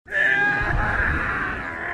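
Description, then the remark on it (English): The character Barriss lets out a loud, sustained female scream lasting about two seconds, high and harmonic with a strained, wavering pitch and a rough, breathy edge, with no other voices. “Sound clip of Barriss screaming.”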